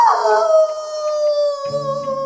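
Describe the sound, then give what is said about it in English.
A dog howls in one long, sustained, wavering note that slides slightly in pitch, with a second lower tone joining near the end. It is loud and heard alone. “Wolves are known for howling, so it must be... Ooh, a wolf. Nope, it's a dog again.”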